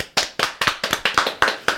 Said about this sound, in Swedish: En applåd tycker jag det är värt. Ja, faktiskt.